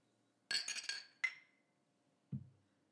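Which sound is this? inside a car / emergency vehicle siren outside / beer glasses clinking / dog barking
beer glasses clinking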